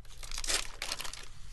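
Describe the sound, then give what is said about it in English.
A plastic energy chew wrapper crinkles and rips as it is torn open, a bright crackling burst lasting about a second with no one speaking. “Oh, I got them open.”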